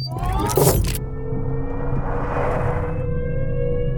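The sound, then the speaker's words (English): A car engine hums steadily as the vehicle drives along, with a brief burst of louder road noise at the start and a constant low rumble throughout, no voices. “Now, just drive the car.”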